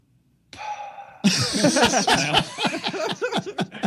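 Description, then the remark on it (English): A person vocally imitates their own snoring: a drawn-out nasal inhale, then a strange, sputtering exhale with rapid choppy bursts, fairly loud, with no words spoken. “My wife says that one of the worst parts of my snoring isn't that it's necessarily so loud. It's that I do a thing where I inhale and then I go.”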